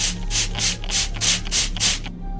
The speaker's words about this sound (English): I wonder what it'll do to my blue hair. Take a spray, everyone!